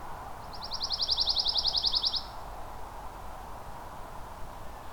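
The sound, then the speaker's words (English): A male songbird sings a rapid, high trill of evenly repeated notes lasting about two seconds, clear, over a steady hiss of outdoor background noise. No one speaks. “The tail seems to vibrate as they sing. This is a male. There's a lot of energy going into this song.”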